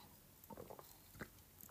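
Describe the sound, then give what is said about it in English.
A quiet sip from a drink: a few soft wet mouth clicks and a faint swallow, heard alone without any talking. “I'm just going to have another little sip.”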